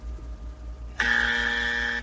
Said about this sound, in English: Ooh, we got a buzzer. You got a button? That's awesome. That's very good.